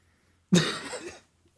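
A single harsh, raspy screaming burst of raw power as a brain scanner flares into life erupts abruptly, loud at the start and lasting under a second before cutting off into silence, with no talking.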